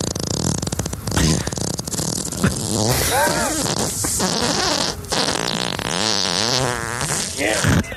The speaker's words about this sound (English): And yes, this is a real fart, by the way.